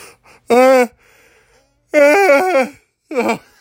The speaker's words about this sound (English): It's yawning, and I'm sorry, because if you're listening to this, you're probably yawning as well.